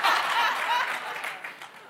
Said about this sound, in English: Three claps. Okay.